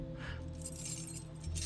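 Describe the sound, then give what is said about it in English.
A bunch of car keys to a Stingray jingles and clinks in short, bright shakes for a moment or two, fairly quiet, over a steady low hum in the background. “The keys to the stingray.”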